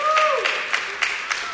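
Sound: audience applauding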